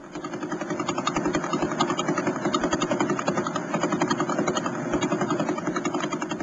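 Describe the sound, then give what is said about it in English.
A pulsar's radio signal, from the spinning remnant of a dead star, turned into sound: a dense, steady whirring drone with faint regular clicks beating through it, slightly more than one per second, like a rotor. No voices. “But what we're hearing there are radio waves converted into sound.”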